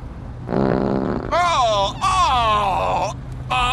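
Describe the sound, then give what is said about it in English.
A low, raspy fart sound buzzes for under a second, followed by long wavering, groan-like tones that rise and fall, loud, with a brief final burst at the end. “Oh, it's just a little flatulence.”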